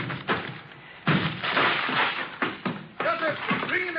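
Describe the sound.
A door being broken down: a series of heavy, irregular thuds and splintering crashes, with voices shouting over the last few blows.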